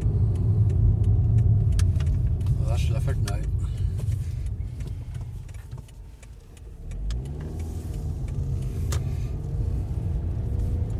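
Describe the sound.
Steady low engine rumble and road noise fill the interior of a moving car, with brief clicks and rattles; a man speaks a short line over the drone, which dips briefly then resumes.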